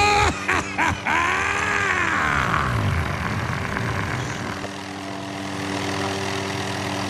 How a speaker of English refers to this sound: Oh, geez, oh, they're landing on the front lawn! Black helicopters! Oh my God!